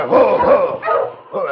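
A team of husky sled dogs barks and yips excitedly in loud, overlapping bursts as they are steered off the trail to shelter by a huge rock, with a brief break before the chorus starts up again.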